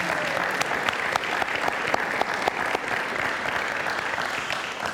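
A crowd applauds steadily, a dense wash of clapping with sharp individual claps popping out, sustained at an even loudness for the whole stretch without any voices.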